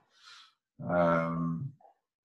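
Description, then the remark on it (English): A person yawns: a short breathy intake of air, a pause, then a long, loud, voiced groan that slides and fades out, followed by a faint little sigh. No one talks. “Excuse me, yawning.”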